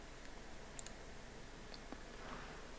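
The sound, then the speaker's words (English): Several soft key presses on a Mac keyboard used with a Windows PC click in quick succession, entering the Control-Alt-Delete equivalent to open Task Manager, faint and sharp over a quiet background with no voices. “Yes, so let's do the Control-Alt-Delete trick again, or my Mac keyboard on a Windows PC equivalent there.”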